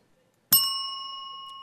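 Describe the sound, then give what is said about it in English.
A buzzer on a movie trivia quiz goes off once: a sudden bright, bell-like ding that keeps ringing as a steady high tone, fading only slightly, with no voices around it. “He's got the buzzer technology down.”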